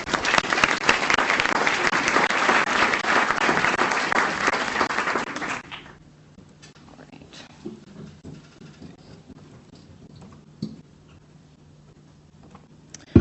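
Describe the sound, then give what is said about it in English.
An audience at an event on the history and future of the book applauds the speakers with dense, steady clapping for about five seconds, then the applause stops abruptly, leaving quiet with a low hum and a few faint scattered noises. “So let's give a round of applause to Gretchen and Amaranth.”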